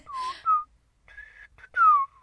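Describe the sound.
A person whistles a short tune, a few clear notes that bend and slide in pitch, with a brief pause midway and no talking.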